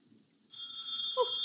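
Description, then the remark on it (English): After a brief hush, a telephone in the hall of a house at night suddenly starts ringing: a loud, shrill, high-pitched ring that holds steadily to the end, with no one speaking. “Wait here in the hall, dear, while I answer the phone.”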